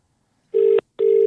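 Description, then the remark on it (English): A telephone line rings out with two steady, buzzy tones in quick succession, loud, as a call is placed to phone someone back after accidentally hanging up on them. No one speaks. “Oh, no. I have to phone him back.”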